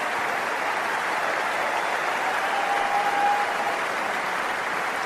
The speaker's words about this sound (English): So Kevin Anderson got a nice reception from the crowd there at Center Court at Wimbledon.